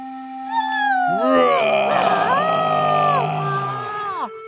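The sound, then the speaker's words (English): A loud, drawn-out roar from a voice imitating a yeti during a yoga-style class, taking a deep breath and roaring as loudly as possible, swelling into a howl-like wail that rises and falls in pitch for about three seconds before cutting off. “Take a deep breath and then roar as loudly as you can.”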